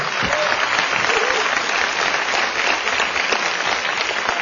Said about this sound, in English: In addition, the mayor's staff worked diligently with us for about a month. If we get one quick round of applause for them as well.